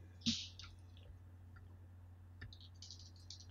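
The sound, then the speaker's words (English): Plastic dice clatter and rattle inside a soft bag as someone rummages, with a sharp knock near the start and scattered small clicks after, fairly quiet, no voices. “Sorry, I've lost all my dice here. They're currently in this bag.”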